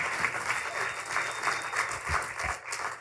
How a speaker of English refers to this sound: Can you say amen? Yeah, let him hear your hand clap. He deserves it.